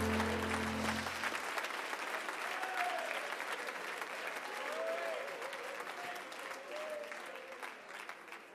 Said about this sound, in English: Come on, clap your hands all over this.